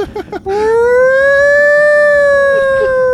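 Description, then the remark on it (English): After a few brief syllables of talk, a voice imitates a siren with one long, loud, sustained wail that rises slightly and holds its pitch for nearly three seconds. “Oh, you're just making that noise.”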